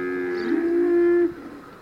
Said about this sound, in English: And when I got to the hotel, everyone was worried that I was late, and I told them I had to stop and record cows.